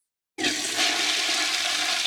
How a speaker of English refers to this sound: I was going to do a fart sound. Yeah. It's a toilet flush. Yeah. they're related.